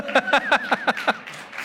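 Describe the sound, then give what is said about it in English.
A brief burst of clapping, about six sharp, evenly spaced claps in a quick steady rhythm, with a faint sustained vocal tone underneath before it trails off. “I see some people wanting to clap. Go ahead.”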